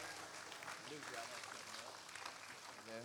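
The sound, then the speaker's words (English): A church audience claps steadily for the full three seconds, giving the Lord a hand clap of praise, a dense, loud wash of many hands, with a few voices calling out briefly over it. “Come on, give the Lord another hand clap of praise.”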